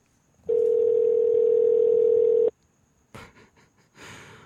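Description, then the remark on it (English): A single steady electronic ringback tone sounds for about two seconds as an outgoing call rings, followed by a few short rustling, breathy noises. “Why don't we give him a ring? Let's give him a ring.”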